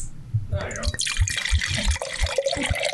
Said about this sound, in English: Ah, a nice pour this morning. Cold wine. It's afternoon, actually, now. Huh? Cold wine for hot days.